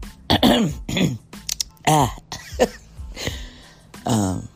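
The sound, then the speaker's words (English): A loud series of throat-clearing rasps and gravelly harrumphs, several bursts spread over a few seconds with short pauses between, no words spoken. “Ooh, let me clear my throat.”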